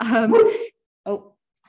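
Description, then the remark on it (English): A dog whimpers in a drawn-out, wavering cry, then gives one short bark after a brief pause. Both sounds are fairly loud, with no talking. “My dog.”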